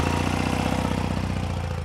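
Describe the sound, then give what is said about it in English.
A motorcycle engine is started and idles with a steady, loud, low-pitched rumble and a regular pulsing beat, holding an even tone throughout with no voices. “Now, let's get this thing fired up.”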